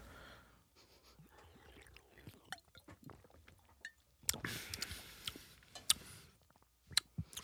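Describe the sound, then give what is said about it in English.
Quiet slurping sips of non-carbonated iced tea from a can, with breathy exhales, small swallowing and mouth noises, and a few light metallic ticks. A louder burst of sipping comes midway. Nobody speaks. “My first sip, I thought, wait, I'm used to these being carbonated.”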